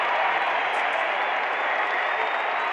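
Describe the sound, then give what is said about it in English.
A packed basketball arena crowd roars and applauds at a Utah Jazz game during a second-quarter timeout after Jordan Clarkson scores, a dense, steady wall of cheering, loud and sustained for a few seconds with no break or single voice standing out. “Crowds into it.”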